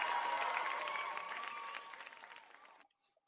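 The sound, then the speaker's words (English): A burst of studio audience applause at the live 2023 Speaky Awards end-of-year award show, dense clapping with a few cheers, holding steady before tapering off and cutting out abruptly after about three seconds. “Can I get a round of applause for the studio audience?”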